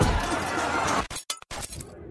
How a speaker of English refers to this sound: At one point, she grabs hold of a huge battering ram and repeatedly smashes it against one of the Capitol windows.